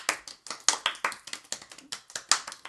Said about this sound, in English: And just so you know, our hands are clapping, going in a circle because you can't see it.